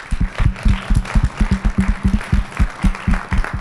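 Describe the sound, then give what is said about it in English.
An audience at a candidates' forum applauds the candidates with a steady stream of overlapping claps that keeps a fairly even, rapid rhythm at moderate loudness throughout, with no one talking over it. “I'd also like to give a round of applause to the candidates for their willingness to serve us.”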